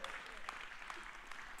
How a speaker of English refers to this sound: If that's happened to you, give the Lord a hand clap and a praise right there.